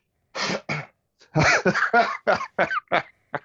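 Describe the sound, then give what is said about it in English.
A rapid series of about eight harsh coughs, starting with two quick bursts, then a dense cluster of hacking coughs that gradually shorten and fade toward the end. “You're coughing.”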